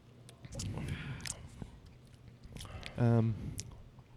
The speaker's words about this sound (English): Cheers. All right. Take a sip.